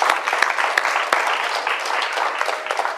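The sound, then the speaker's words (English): A church audience gives God a praise clap during a morning service, sustained applause of dense overlapping hand claps with sharp individual smacks popping through a steady, bright wash of clapping that holds throughout. “Come on, give God a praise clap this morning.”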